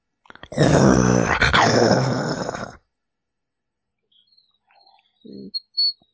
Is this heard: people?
no